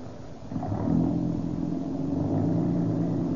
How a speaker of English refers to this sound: Gosh, what a lot of pep. This old car's got a lot of pep. Hey, it's a different car since we've been using that Rio Grande crack gasoline.